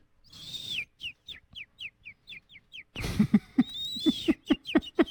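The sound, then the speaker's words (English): Someone imitates a bird with a quick series of high, downward-sliding whistled chirps, about a dozen in a steady rhythm, growing louder and busier toward the end with soft thumps underneath. “First off, great bird impression.”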